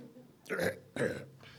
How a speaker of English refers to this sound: Some disruption is necessary. A belch is a disruption.